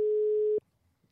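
A single steady telephone ringing tone, a pure electronic beep held for just over half a second, then cutting off abruptly into near silence. No voices.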